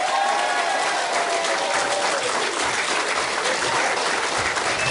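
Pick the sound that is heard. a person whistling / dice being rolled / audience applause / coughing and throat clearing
audience applause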